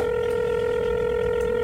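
A steady, unbroken telephone tone hums at an even volume for a couple of seconds, clear, with a faint low rumble underneath and no voices, as a reporter picks up the phone to call his editor.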